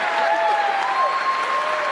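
A large crowd claps and cheers steadily and loudly, with sharp whistles cutting through the dense roar of applause.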